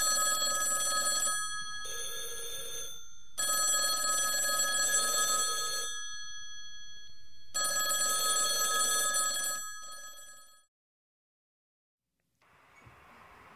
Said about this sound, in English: I said the phones are ringing off the hook.